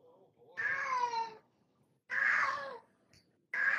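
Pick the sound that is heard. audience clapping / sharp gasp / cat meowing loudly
cat meowing loudly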